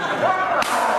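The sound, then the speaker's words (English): A single sharp slap of a hand against a man's body near the liver cracks out partway through, over a steady background hum, with a brief vocal sound just before it. “Is that how you wake people up? Slap their liver?”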